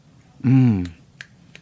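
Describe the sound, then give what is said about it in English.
A brief voiced sound, like a low hum, gives way to a few sparse, sharp finger snaps spaced irregularly, fairly soft and crisp against a quiet background; finger snapping in place of hand claps, in the style of the spoken word community. “I'm only going to do the finger snapping like we did back in the spoken word community back in the day.”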